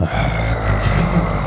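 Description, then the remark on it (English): A man's voice imitates a rapper growling into a microphone to start his show: one low, rough, rumbling sound held for about a second and a half at a steady, fairly loud level, with no words. “And he's just growling into this thing.”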